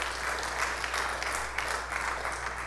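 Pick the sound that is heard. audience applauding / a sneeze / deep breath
audience applauding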